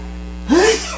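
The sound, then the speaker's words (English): A single quick sneeze bursts out after half a second of steady low electrical hum, a sharp breathy blast with a brief voiced rise, then the hum carries on alone. “Bless you.”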